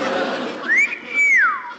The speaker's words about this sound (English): What on earth was that? It's that sailor on the corner. He's whistling. His bank had closed the door. He's only whistling for the cab.